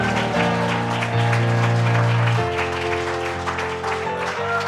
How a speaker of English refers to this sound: And let's give him and the Lord a big hand clap, all right?